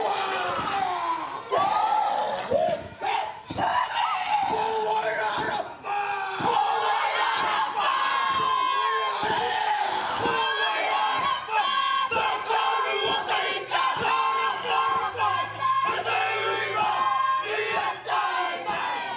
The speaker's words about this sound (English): As the pōhiri begins, the haka Wairarapa Moana is performed by some of the local school kids.